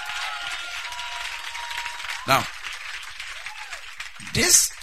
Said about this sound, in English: Okay, clap your hands for yourself if you believe it.